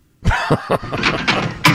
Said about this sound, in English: Open another door so I can go back in the bathroom.